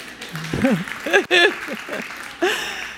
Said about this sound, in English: Thank you, applause is good.